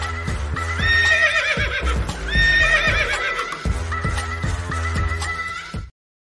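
A horse whinnies loudly twice, long quavering neighs, over a steady, rhythmic clip-clop of hooves that continues for about six seconds before stopping abruptly.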